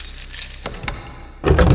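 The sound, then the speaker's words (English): A bunch of keys jingles with bright metallic clinks and rattles as a key is taken from a desk drawer, a few scattered taps at first, then a louder, busier jangle toward the end. No voices. “She took a key from a desk drawer in the next room.”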